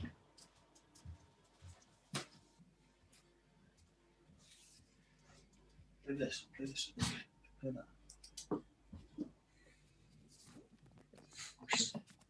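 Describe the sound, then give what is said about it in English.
A female pet dog barks in short, scattered bursts amid clattering and rattling noises as she rattles around, busiest toward the middle and end, with muffled voices faintly in the background. “sorry, it's my dog going crazy again.”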